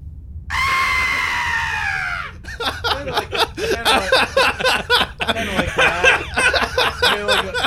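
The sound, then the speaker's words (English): A person imitates a banshee with a loud, high wailing scream held for nearly two seconds, its pitch sagging slightly, followed by chatter and laughter. “what's that banshee scream sound like?”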